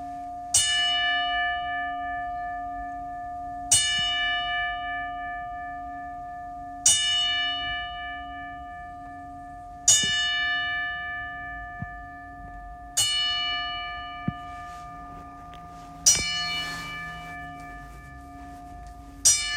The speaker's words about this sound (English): Before we leave, we're going to do one more 10 bell salute for all those that we have lost. So let's get into it. Rest in peace to everybody that we lost in 2020.